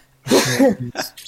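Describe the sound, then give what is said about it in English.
A single loud sneeze with a voiced buildup breaking into a sharp burst of breath and a short trailing sniff. “Bless you”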